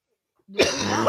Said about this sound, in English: We're all coughing, Jesus Christ.